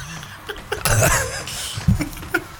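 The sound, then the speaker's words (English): A few overlapping coughs from two people coughing on cue, bursting out together in a short cluster, then a couple of sharper single coughs trailing after. “Cough. Both of you now.”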